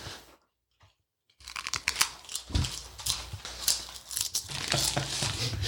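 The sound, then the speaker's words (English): Loud crunching of crispy Notorious B.I.G. Cookout barbecue sauce potato chips being chewed, a steady run of crackly bites after a brief near-silent pause, with no talking. “Sorry about all the crunching, everyone, but you're going to have to deal with it.”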